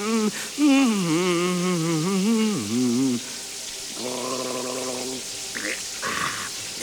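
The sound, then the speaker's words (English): A steady hiss of shower water runs throughout on a Sunday morning, while a man hums and sings wordlessly over it with wavering, warbling notes. “Ah, there's nothing better than a nice, clean, refreshing shower on a Sunday morning.”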